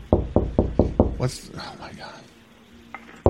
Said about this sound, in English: She's trying to kick the fucking door.